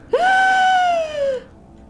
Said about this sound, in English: a throttled, choked scream.